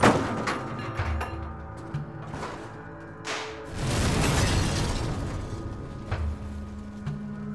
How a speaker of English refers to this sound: The steel jerked the truck one final time into the wall and swung it around in a clockwise motion. The truck exploded through the wall and flew into the air before dropping down and smashing onto the rocks below.